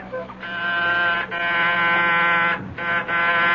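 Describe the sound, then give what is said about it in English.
A harsh, steady doorbell buzzer sounds in long rasping bursts, briefly cutting out twice before droning on again, loud and with no voices. “Who is ringing?”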